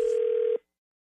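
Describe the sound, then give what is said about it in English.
A single steady electronic telephone tone, mid-pitched and buzzy, as a call is placed to a massage business; it holds for about half a second and then cuts off abruptly into silence. No voices are heard. “In your phone tap right now. It's another phone tap.”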